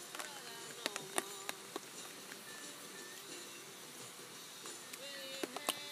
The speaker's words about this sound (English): I'm gonna close that up. Fucking flies get in there.